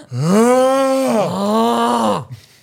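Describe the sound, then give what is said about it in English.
A voice imitates a dad's loud snoring with two long, droning, groan-like breaths, the second slightly lower, loud with no words spoken. “Your dad's snoring.”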